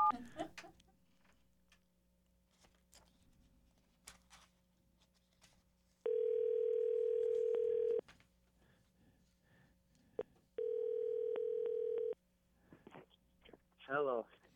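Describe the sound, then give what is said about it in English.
A telephone line tone from a new phone system sounds twice, each a loud steady electronic hum lasting about two seconds, separated by a short pause, with faint rustling and background noise around it. “We're trying to get a handle on a new phone system here.”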